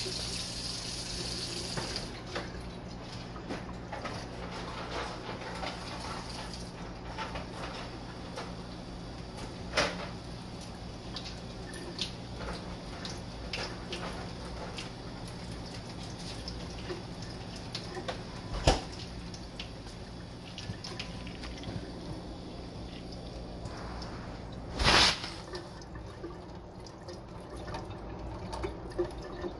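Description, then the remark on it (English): Water pours and sloshes around inside a container as some is spilled out and the rest swished around to rinse it, a steady liquid rush with small clinks and taps, and a sharper knock near the end. “Spill a little bit of water out anyway. Swish it around.”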